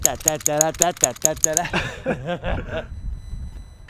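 A wind-up monkey toy claps its cymbals in a quick, even run of about eight bright metallic clashes over someone's chuckling, then the clashing stops while the laughter trails on.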